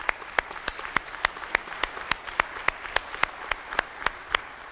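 An audience applauds steadily, a dense patter of many hands with a few louder, evenly spaced claps standing out, sustained for several seconds with no talking.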